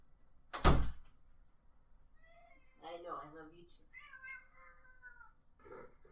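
A cat meows several times, drawn-out and wavering, after a sharp thump near the start. The meows come in uneven bursts, the last one short and clipped.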